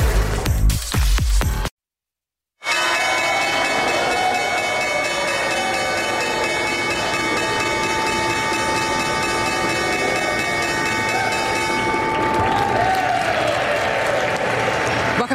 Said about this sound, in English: That was the opening bell for the final session of the week